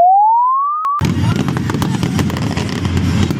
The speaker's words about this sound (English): Star Wars fireworks